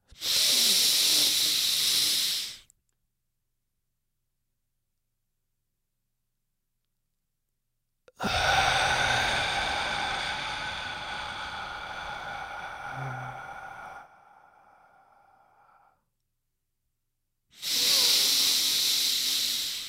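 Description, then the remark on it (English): A short breathy hiss, a pause of silence while the breath is held, then a long, steady, airy exhale let out slowly in a breathing exercise, fading over several seconds before another brief breath. Clear, with no talking. “And then slowly let that breath out. So it goes something like this.”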